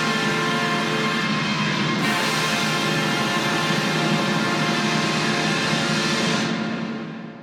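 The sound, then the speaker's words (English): The Liberty Bell rings loudly and steadily for several seconds in the finale of 1776, its rich, sustained metallic overtones blending into a dense, continuous wash of sound before fading out at the end. “And so we come to the finale of 1776, which features the sound of the Liberty Bell.”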